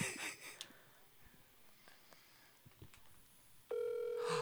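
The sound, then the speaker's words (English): Quiet room noise and a few soft clicks, then a loud, steady electronic phone ring tone of a speakerphone call about a Craigslist ad starts near the end and holds, sounding tinny as if played through a phone speaker. “Do you think he actually is anticipating a phone call?”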